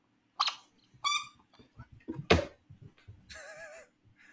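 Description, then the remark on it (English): A dog digs in blankets for a buried toy, scuffling and pawing through the soft fabric in quick bursts of rustling and thumps, with a brief high-pitched whine or squeak near the end. “has a very active dog he's playing fetch with.”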